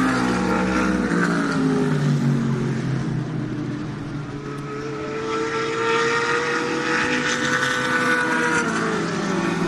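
Loud, continuous engine roar with shifting revving pitch, sustained throughout, like car engines vrooming with no voices.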